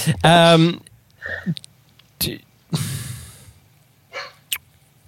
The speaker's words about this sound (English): So the dogs are screaming again. That's all right. We'll just continue.